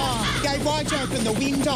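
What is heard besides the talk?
seagull calling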